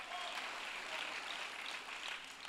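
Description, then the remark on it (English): A crowd at a sermon claps steadily after the preacher asks them to clap if they agree, dense overlapping handclaps forming a sustained wash of applause at moderate volume, with no clear individual rhythm and no voices standing out. “Clap if you agree tonight.”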